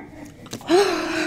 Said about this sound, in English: Her breath gets more and more labored until she's gasping, struggling to get the air she needs.